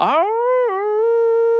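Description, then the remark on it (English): A single loud howl imitated by a human voice, mimicking a hound dog: the pitch rises at the start, dips briefly, then holds a long, steady, mournful tone for under two seconds. “And then he farts like that, the hound dog does, and he stops howling.”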